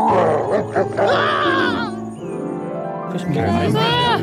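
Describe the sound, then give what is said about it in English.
Loud, layered beastly growls and roars from a three-headed dog, rumbling and sweeping up and down in pitch, easing briefly midway before surging again. “It seems to be a dog with, three heads.”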